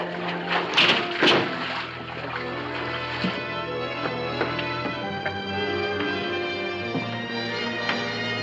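The heavy metal door of a diving bell that has surfaced at a pier is forced open with a couple of loud clanking bursts near the start, followed by a steady, resonant droning hum with scattered lighter knocks.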